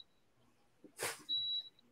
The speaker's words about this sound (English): I keep hearing that beeping and I think it's coming from my kitchen. I'm like, who's playing with my air fryer? I'm playing with my air fryer. I'm air frying some things up.